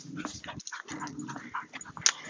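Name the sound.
dog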